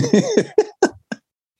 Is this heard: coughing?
yes